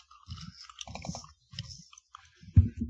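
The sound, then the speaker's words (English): Crunchy chewing of snack food, several rhythmic bursts of munching with brief pauses between, ending in a louder crunch; no one talks. “I keep snacking while you guys are talking, so I'm listening, but I'm like trying to eat real quick.”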